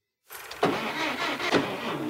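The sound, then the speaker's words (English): A car engine tries to turn over but fails to start, with two sharp cranking surges about a second apart over a steady mechanical whir, fairly loud, no voices. From a scene in The Simpsons; the car has no battery. “Well, now your car has no battery.”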